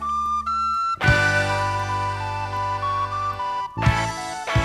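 A bright, high penny whistle melody plays over a full music backing with steady bass, carrying a lively tune up front in the mix before a brief pause and a return.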